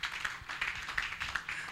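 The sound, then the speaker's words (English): An audience claps their hands during a sermon, a dense, steady patter of many overlapping claps at moderate loudness, with no voices over it. “Somebody clap your hands so that I'm teaching something.”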